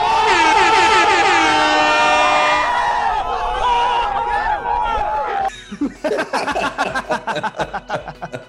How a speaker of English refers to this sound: And then the air horn. You know I'm doing that.